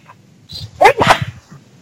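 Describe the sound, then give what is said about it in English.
A single loud sneeze: a short breathy intake and then an explosive, spraying burst of air, heard on its own with no talking. “Excuse you. Bless you.”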